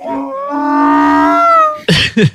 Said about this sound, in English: That one. That's a donkey? That's not just a door in a haunted house?